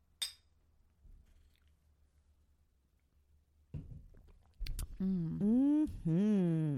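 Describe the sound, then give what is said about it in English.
A single bright clink of glasses rings out right at the start as people toast with salted caramel moonshine, then near silence, some soft shuffling, and a voice humming a long, pleased murmur. “So I say let's go ahead and just down another one. Let's do it. In honor. Okay. Let's do it. Cheers, bitches.”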